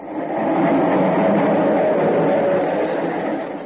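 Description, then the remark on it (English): A steady, broad rumble of a subway train passing underneath, swelling in quickly and holding loud and continuous for a few seconds before easing slightly, with no voices over it. “The subway. It's right under us.”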